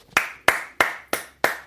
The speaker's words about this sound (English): Let's go defense! Clap, defense! Clap, clap, clap, clap, clap.